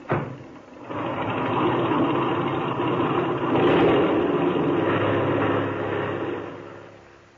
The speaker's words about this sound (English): Now, set your brakes. Open that motor, and when I wave to you from the outside, take her off.